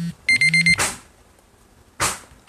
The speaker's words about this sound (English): Do not know if you guys heard that, but that was the timer.